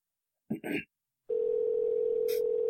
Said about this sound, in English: It's calling him back. Give it a second. It'll ring.